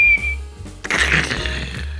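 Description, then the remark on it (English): A voice imitates a whistling firework: a short, high, steady whistle, a brief pause, then a loud, hissing, crackly burst that holds until the end. “The noise of a firework, it sort of makes a very distinct noise, doesn't it?”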